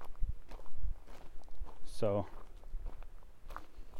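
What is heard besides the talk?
footsteps walking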